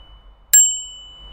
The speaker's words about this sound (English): I've got a well-fitted helmet on, my brakes are working, and my bell, most importantly, is loud and clear.